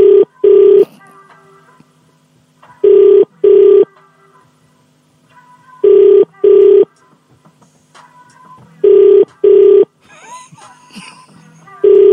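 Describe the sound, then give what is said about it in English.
An outgoing phone call ringing: four double-pulse ringback tones repeat at steady intervals, loud and clear, with faint background noise between them. “She won't pick up?”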